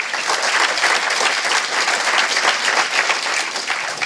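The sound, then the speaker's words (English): A crowd applauds the hosts at Level 39, dense overlapping claps forming a loud, continuous wash of sound that holds its level for the full few seconds with no voices over it. “So before we kind of get going, can we give those guys a round of applause for having us back?”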